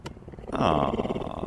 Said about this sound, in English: Cougars are the largest wild cats that can purr, and I've got a short audio clip of a cougar purring, which is, this is going to be very relaxing.